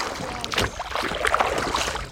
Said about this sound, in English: So as he is rowing us into the sea, I can see the kind of dark brown, kind of yellow water.